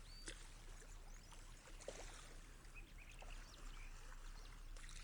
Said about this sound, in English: I love listening to the waves, don't you? Without even meaning to, have you noticed how it changes your breathing? Something about the rhythm of it all.